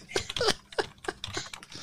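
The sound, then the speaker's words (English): Quick, irregular clicking of keys on a computer keyboard, a burst of several taps with short pauses between, moderately loud, with no voices. “There was it's fucking keyboard. I'm typing now.”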